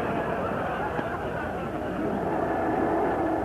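Ocean surf at the edge of the water beside a house rolls in a steady, unbroken roar of washing noise, holding a fairly even loudness throughout with only slight swells and no distinct individual wave crashes.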